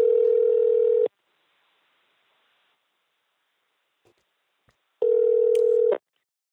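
A phone call's ringback tone: two loud, steady one-second rings separated by several seconds of quiet, with a couple of faint clicks in between. No voices are heard.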